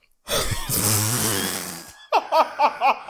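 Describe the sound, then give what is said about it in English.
A woman gives a long, loud, breathy yawn right into the microphone, groaning for nearly two seconds, then a brief pause and a few quick, rhythmic bursts of laughter. “When I say she just yawned out in the mic.”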